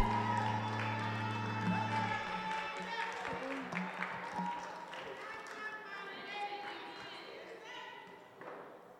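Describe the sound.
A church audience gives a clap offering, breaking into sustained, dense applause with scattered voices and cheers mixed in to invite a sister to give a ministration, a low held keyboard chord fading out early on, the clapping tapering off near the end.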